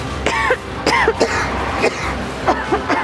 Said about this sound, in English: Are you suffering from a nagging cough that just won't go away? Sorry. That doesn't sound fun.